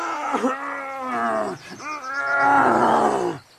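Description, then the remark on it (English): A crocodile roars in pain after being hit in the eye by a bow, two loud, drawn-out bellowing cries, the second longer and rising in strain before cutting off abruptly. “Crocodile roared in pain.”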